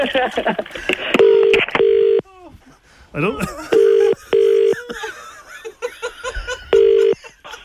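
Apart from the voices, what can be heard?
telephone being dialed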